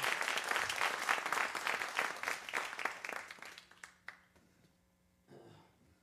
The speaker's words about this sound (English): Let's give her one more round of applause. Thank you so much.